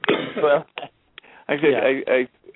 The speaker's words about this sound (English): Sorry, go ahead. I just took a drink of water and I'm coughing.